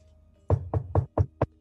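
knocking on a door

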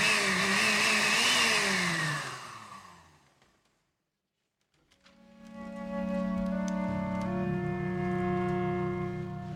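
car engine revving

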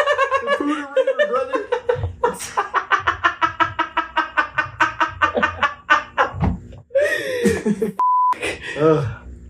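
censor bleep tone

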